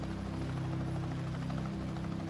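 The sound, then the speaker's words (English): A helicopter takes off from the Irish Helicopters compound near Dublin Airport, its rotor thrumming steadily, a loud, low chopping drone with a constant engine hum underneath and no voices. “The pilot was Captain Thompson Boyes from Newtonards, a skilled pilot, and they took off from Irish Helicopters compound near Dublin Airport and proceeded to County Leash.”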